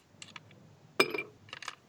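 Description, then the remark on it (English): Ice cubes from an ice tray, the last of the tray, clink into a glass: a few light taps, then one sharper clatter with a brief glassy ring, followed by a quick scatter of smaller clicks. No one speaks. “How many ice cubes are you going to put in that fucking glass?”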